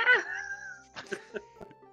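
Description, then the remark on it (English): A person imitates a cat's yowl with a loud, wavering, drawn-out cry that fades. A few short, choppy vocal sounds follow. “And you Kiri guys, just like your typical cat,”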